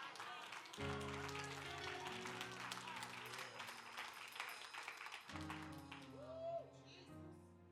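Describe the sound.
Scattered, unenthusiastic clapping from a small church crowd runs steadily for several seconds at moderate volume, with a low droning tone and murmuring voices underneath.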